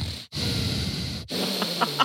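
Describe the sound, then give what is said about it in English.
A voice imitates heavy, raspy breathing, with loud noisy inhales and exhales broken by brief pauses, ending in a couple of short throaty catches. “I was filming my mom the other day and you can just hear this like child molester breathing like...”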